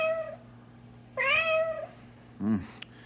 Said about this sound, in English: I'd say the cat is right here in between the wall. All agreed? Sounds that way.